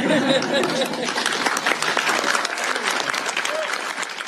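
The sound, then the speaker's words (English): Steady, dense applause from a group of people after the signing of Nikki's law in the state of Washington on March 5, 2020, a continuous crackle of many hands clapping at even loudness for several seconds, with faint chatter and a few voices mixed underneath. “And having done so, everyone can applaud and bump elbows.”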